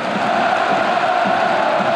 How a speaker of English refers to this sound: He's now playing for one of the most revered clubs in Europe, Dortmund. And when 80,000 German fans scream your name, you better deliver.